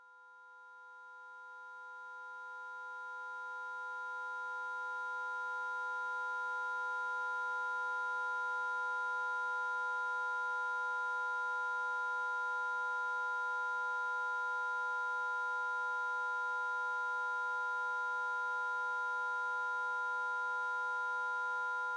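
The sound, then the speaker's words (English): Steady electronic tones from an ultrasonic animal repeller, several pure pitches layered into a high, piercing drone that swells in over the first few seconds and then holds unbroken. From "Pest", a live performance piece by sound artist Robbie Judkins in London in 2017. “But never fear, you've got an ultrasonic animal repeller.”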